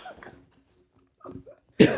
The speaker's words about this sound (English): He's coughing, see? No, what does the coughing tell you?